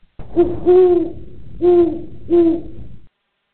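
An owl hoots four times, a brief note followed by three longer, low, mellow hoots with slight pauses between them, loud and clear with no other sounds.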